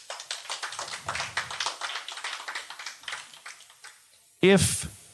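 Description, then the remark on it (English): An audience applauds with a dense patter of claps that gradually thins and fades over several seconds, then a loud voice cuts in abruptly at the end. “Round of applause.”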